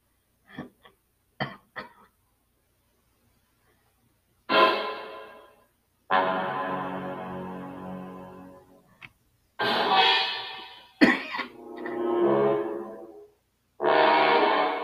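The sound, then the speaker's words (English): A person clears their throat and coughs several times in a row, fairly loud, with short gravelly bursts and raspy drawn-out hacks separated by brief pauses; no speech. “Clear my throat.”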